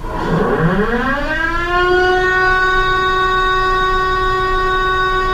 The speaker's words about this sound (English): That's an air raid siren. Now watch. Where'd everybody go? Down into the air raid shelters. They did that all day long.